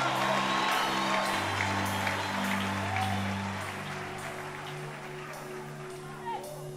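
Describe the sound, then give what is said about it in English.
A crowd claps steadily and loudly as a clap offering to the Lord, with scattered whoops and cheers, over a low sustained organ or keyboard chord; the applause gradually thins toward the end. “What are you waiting for to give the Lord a clap offering?”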